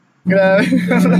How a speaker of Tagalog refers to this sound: And ang ingay ng sasakyan. Narinig niyo ba yun? Big bike na rin ko.